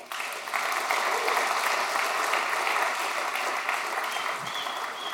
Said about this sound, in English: Somebody clap for him.